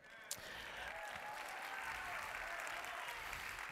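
A crowd applauds steadily, the dense clapping holding an even, moderate loudness from start to finish, with a sharp isolated clap near the beginning.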